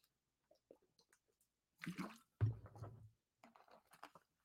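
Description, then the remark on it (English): Drinking sounds: a couple of wet gulps and sloshes of water in quick succession, surrounded by small mouth clicks and faint swallowing noises, with no talking. “Get a drink of water because I'm going to need it for this one because I may unleash and I don't get two flips.”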